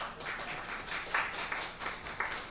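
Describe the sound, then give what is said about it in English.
A church audience applauds the announcement of a new ministry coordinator for worship, many hands clapping in a dense, crackling patter with a few sharper individual claps standing out, fairly soft overall and with no voices. “You can clap, it's okay, yeah.”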